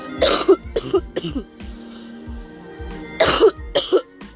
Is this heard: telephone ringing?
no